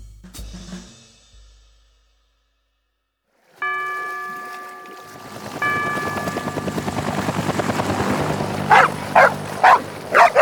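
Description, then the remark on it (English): Dogs bark several times in quick succession near the end, sharp and fairly loud, over a steady, rhythmic mechanical whirring that builds underneath. “You know I don't give the dogs people food.”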